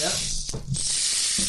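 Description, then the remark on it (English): A rain stick made by Sherry Osborne being played, a steady, bright hiss of tiny grains trickling and pattering continuously, with a brief swell partway through and faint low murmurs underneath. “She makes these gorgeous rain sticks.”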